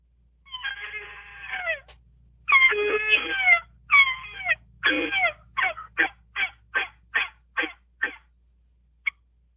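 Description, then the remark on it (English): A turkey call plays a few drawn-out, wavering yelps, then a quick run of about ten short, evenly spaced notes, ending in one sharp, clipped cluck. Clear, with no talking. “That's a cluck.”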